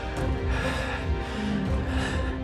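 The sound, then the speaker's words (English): A voice imitates heavy, labored breathing of someone who has just run: a steady stretch of rough, strained panting, fairly loud, with no words spoken. “And I will say, as you get up to the door next to Melody, you kind of hear a difficulty breathing coming from Melody, having just run.”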